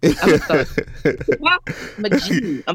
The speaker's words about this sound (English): Excuse me. Oh, you cough so cute. Look at you with your little cute self.